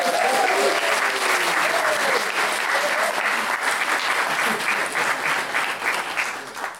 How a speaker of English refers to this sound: So I think that's been enough time for... Shall we? Can we give a huge round of applause, please,